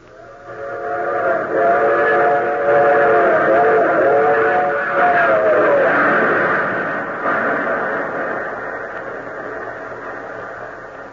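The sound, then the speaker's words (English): A train that passengers boarded at Washington rumbles along steadily while a multi-toned whistle sounds in a long, wavering blast, then fades as the rolling clatter continues. No one speaks. “G6, the colonel boarded train at Washington.”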